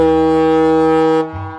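A deep, loud ferry boat horn blasts in one sustained tone for over a second, then cuts off and drops to a lower, fading rumble. No one speaks.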